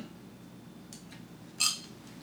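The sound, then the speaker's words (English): Glasses clink together in a toast: one bright, ringing chime that briefly lingers, preceded by a couple of faint soft taps, over a low steady hum with no voices. “So I'm going to cheers for nonsense of all of the deaths happening in the same place.”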